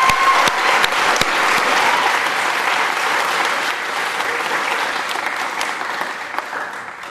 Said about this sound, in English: So a round of applause for them.